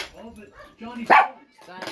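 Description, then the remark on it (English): A small dog, the mascot Genji, lets out one sharp, loud bark with a low growly rumble around it, while people talk in the background before and after. “Sorry, I got a little growly dog.”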